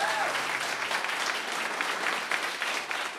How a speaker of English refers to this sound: This is a proper lefty crowd. We're getting applause for all the right things.